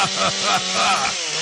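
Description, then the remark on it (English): A chainsaw roars steadily as a man carves a big piece of wood with it, a dense, gritty buzz that holds at high volume throughout with slight rises and dips in pitch. “Wow, he's quite the artist with a chainsaw, too.”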